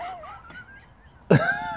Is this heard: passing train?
no